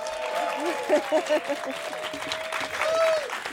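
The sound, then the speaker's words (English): A large Derby Eve crowd in a performance studio bursts into cheering and steady applause, with whoops and shouted voices rising over broad clapping noise for several seconds, loud. “Today we've got a great big Derby Eve crowd for Live Lunch. Let's hear a big cheer.”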